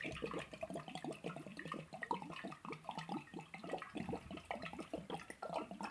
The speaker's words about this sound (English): Oh, you want to see chugging? I'll give you some chugging time. Get it, bro. Get it.